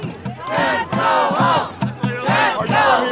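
A loud crowd mobbing a school board member trying to get into a building chants for him to go home in a steady, repeating rhythm, many voices shouting together, with raised, strained screams at him rising over the chant throughout.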